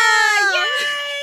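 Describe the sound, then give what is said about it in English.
A short, high-pitched vocal squeal at the end of an intro, sustained and bright with strong harmonics, bending slightly in pitch before holding steady for about a second. “I love the little scream at the end.”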